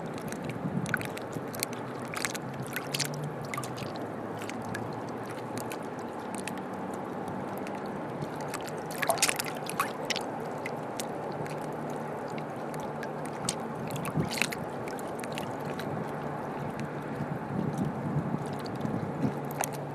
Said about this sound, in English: What I'm going to do is I'm going to finish this podcast by going right down by the water, getting like a first person view of the water. Wait a minute, it's quite hard to do this. Seagulls flying around.